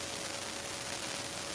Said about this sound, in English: And hold on, I'm getting kind of like an interference.